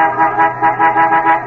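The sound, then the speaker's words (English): A car horn blares in one long, continuous honk, loud, its brassy tone wavering slightly in volume throughout, with no voices over it. “Lay off of that horn. I know you got one.”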